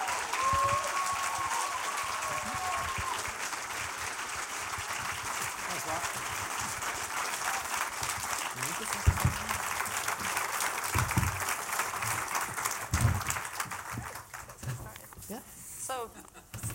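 An audience at the Beyond Borders event bursts into a long, steady round of applause welcoming two speakers before a debate, dense clapping holding at an even loudness for about fifteen seconds before thinning out at the end.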